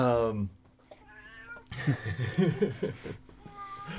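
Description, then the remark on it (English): A domestic cat gives a couple of drawn-out meows, followed by people talking and chuckling over a low steady hum. “I know you've killed lots of birdies and mice and stuff.”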